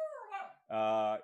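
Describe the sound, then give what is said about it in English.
A dog, Shima, lets out a whimper that slides downward in pitch, then a brief pause and a steady, strained howl-like cry while looking out the window at dogs being walked. Two short vocalizations, fairly loud, with no other sounds. “my dog is watching the podcast, but also looking out the window at dogs being walked. So there's her commentary.”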